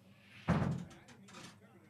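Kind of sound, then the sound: household object, door being closed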